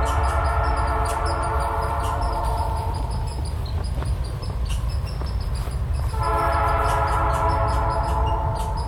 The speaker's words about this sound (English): And a train.